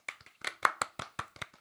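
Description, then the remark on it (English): A short burst of hand clapping, about a dozen sharp claps in an uneven rhythm, moderately loud, with no voices, as a gathering of grand witches and wizards applauds after a trial. “All the other grand witches and wizards were watching her and gave her a round of applause.”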